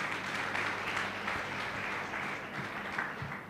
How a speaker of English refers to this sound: Clap for Jesus again.